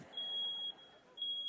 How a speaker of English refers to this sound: That fire alarm is not to make you feel bad about yourself. It's meant to warn you.